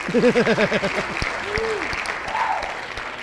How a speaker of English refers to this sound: I'll save you with the applause. Give her a hand, everybody.